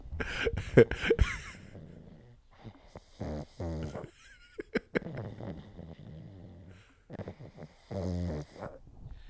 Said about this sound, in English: It sounds like a grown-ass man. It does. Like, there's been times when I've been on the phone and people are like, who is over there snoring right now? And I'm like, it's my dog. It's my dog. My 22-pound dog snores like a fucking gorilla.